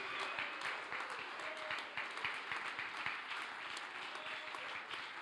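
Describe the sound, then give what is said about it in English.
A crowd claps hands steadily and densely for several seconds, a sustained wash of applause with scattered sharper claps and faint shouting voices mixed into the noise. “You ought to jump on your feet, clap your hands and shout, God can do it.”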